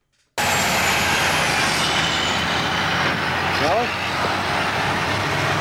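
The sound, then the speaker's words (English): Loud, steady rumble of heavy trucks going through a checkpoint, engines droning continuously with a brief high squeal partway through, and indistinct voices murmuring underneath. “These are just trucks going through the checkpoint.”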